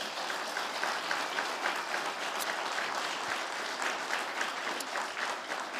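A crowd applauds steadily for several seconds, a dense, even wash of many hands clapping at once, sustained without letting up: an audience giving a guest speaker a hearty round of applause.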